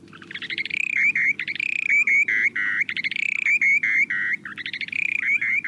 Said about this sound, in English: These calls might seem unimpressive, but take a listen to the short-billed dowitcher's breeding songs.